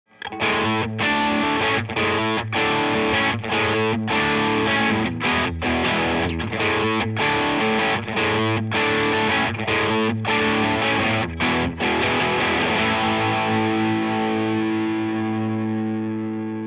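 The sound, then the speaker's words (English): A heavily overdriven electric guitar, played through a Keeley D&M drive stacked with a JHS Bonsai, plays loud, thick chords with rhythmic stops and restrikes, the saturated tone ringing out and slowly fading at the end. No voices are present. “I also like stacking Tube Screamer circuits with other drive pedals. I'm going to use a Keeley D&M drive in combination with the JHS Bonsai.”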